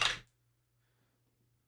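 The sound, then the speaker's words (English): A single quick, sharp clatter of a die landing on a tabletop as it is rolled for an arcane check, fairly loud, followed by near silence with a faint low electrical hum. “Try one of Wes's new dice”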